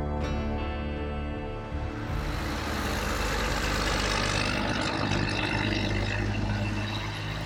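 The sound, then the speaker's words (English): Steady traffic rumble with a low engine drone, a vehicle idling or passing while other cars hum; continuous and moderately loud, with no voices. Traffic in the town of Lee Vining on Wednesday, 19 June. “That's something we haven't heard for a while. Traffic noise.”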